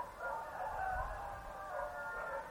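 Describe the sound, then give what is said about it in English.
An owl calls outside a hotel window, one drawn-out wavering hoot that holds steady for a couple of seconds at moderate loudness, heard on its own with no voices. “The owl's outside my window.”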